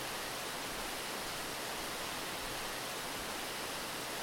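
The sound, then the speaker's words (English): A steady, unbroken roar of rushing water from a waterfall, a dense hiss spread evenly from low rumble to bright spray, continuous throughout with no voices. “Oh, where did this waterfall come from? Has this always been here?”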